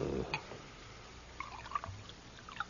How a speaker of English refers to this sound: You drink, huh? Of course. Will you pour for me?